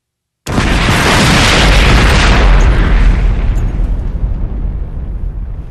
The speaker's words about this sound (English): Jos took a deep breath, aimed the blaster, and fired. There was an explosion, a crushing clap of thunder, a blinding light.